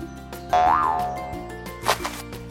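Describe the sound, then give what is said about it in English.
A springy cartoon boing for a frog jumping up and down, its pitch bending up and then sliding back down, followed by a second, shorter twangy bounce, with no one talking. “Frog starts jumping up and down.”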